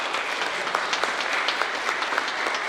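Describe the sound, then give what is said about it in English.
A crowd at a Lenten church gathering claps steadily to welcome a mother-and-daughter team, a dense, even wash of many hands with scattered sharper claps poking through, holding a fairly constant level throughout without any voices. “It's Lent, but we can give them a little bit of a round of applause.”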